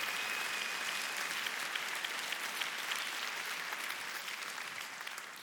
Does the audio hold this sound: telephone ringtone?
no